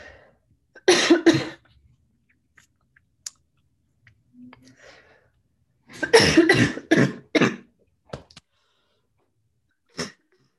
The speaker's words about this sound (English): I have to cough. Hold on one second.